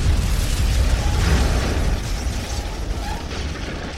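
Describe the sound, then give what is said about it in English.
A huge cannon fires: a heavy, rumbling blast with deep low booming and broad crackling noise that stays loud for several seconds before easing off slightly. No voices are heard. “As you're doing that, the cannon of the huge cannon on a guaranteed rate fires. Boom! And hits the broadside of the Supreme Trireme.”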